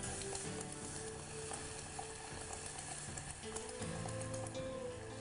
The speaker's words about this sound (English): As you can see, my red wine vinegar and my brown sugar is still reducing. I might actually just put a small bit more in there.